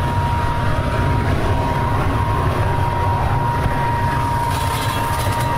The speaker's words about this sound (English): You'll probably hear the leaves going into the vacuum.